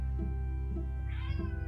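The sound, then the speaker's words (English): A cat meows repeatedly in short, insistent calls, clear, with a steady low hum underneath and no talking; the cat is trying to come inside on a chilly winter day. “my cat is trying to come in again. Hello, Fluffy. I hear you meowing.”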